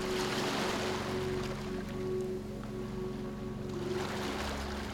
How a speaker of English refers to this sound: Now, sit at the water's edge, allowing the waves to lap gently against you.